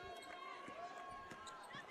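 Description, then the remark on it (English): A basketball is dribbled on a hard court during a game involving Adams Central, score 21-18, as a player dribble-drives and takes a shot; several steady thumps about every half second, with shoe squeaks and a murmur of voices around it. “She'll dribble drive, bat shot.”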